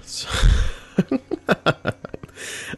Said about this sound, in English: Right before I clicked record, I took a sip of coffee, so that's the... I didn't burp, it was just the throat gurgles, the... I don't know, what are those called? I can't help it. It just happens, you know